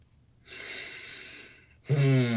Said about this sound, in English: Breathing.